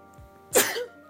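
A single sharp sneeze bursts out, a short explosive rush of breath that trails off quickly, with no talking around it.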